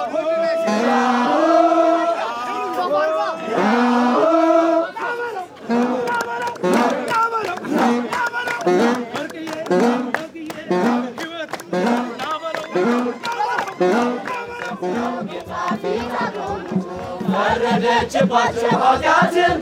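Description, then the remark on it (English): A church choir in crimson robes chants and sings together in a steady, rhythmic cadence, loud, as the group moves along in procession without pause, arriving from an Ethiopian Orthodox wedding ceremony to a park for the celebration. “That's a church choir in their crimson robes arriving from the Ethiopian Orthodox wedding ceremony to the park where it's time to party!”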